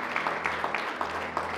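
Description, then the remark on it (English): A church audience applauds together for a person who has decided to follow Jesus, a steady wash of many hands clapping at once with a few sharper claps standing out, sustained throughout. “Come on, let's clap for this person over here.”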